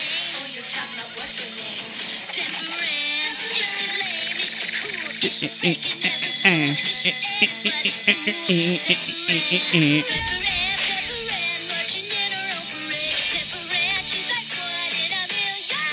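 A bright, upbeat late-90s cartoon theme song, an extended intro about a minute long, plays at full volume, with a sung vocal melody over busy, punchy instrumentation and no talking over it.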